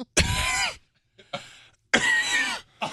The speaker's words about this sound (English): That second cough, man, was the one.